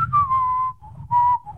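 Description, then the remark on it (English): Someone whistles a short Western movie-style tune, in the manner of The Good, the Bad and the Ugly and The Magnificent Seven, into a microphone: two sustained phrases with gliding pitch that drift slightly downward, over a low background rumble. “It's laughing at my whistle ability because I don't think it really translated well over the microphone.”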